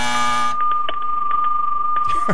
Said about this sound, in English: And here comes the buzzer, so we have to go.